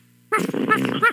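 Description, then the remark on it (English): A puppy gives a brief whimpering growl, a wavering, throaty whine lasting under a second after a moment of quiet, with no one talking. “Come here, puppy.”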